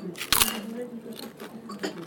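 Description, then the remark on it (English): A sharp, loud crunch as a langoustine shell is bitten through whole while eating, followed by a few softer, irregular chewing crunches, with a low voice humming or murmuring underneath. “You can't just crunch it up whole like that, can you?”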